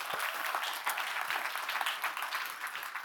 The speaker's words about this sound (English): Anyone here for the very first time? Got one over here. Who else? We got a couple over here. One right here. Nice. Hey, can you give them a round of applause for being here tonight?